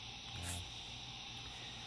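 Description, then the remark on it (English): A dense, steady chorus of frogs calling in a Florida swamp at night after a hot day, a continuous shrill trilling drone with a brief low rumble near the start and no voices. “So while we sit here in the Florida swamp again, these frogs are making all kinds of noises in the background.”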